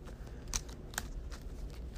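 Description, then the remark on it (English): A deck of game cards being shuffled quietly during a tabletop card game, a few crisp papery flicks and snaps spaced across a couple of seconds over a low background hum, with no talking. “Now that's been shuffled.”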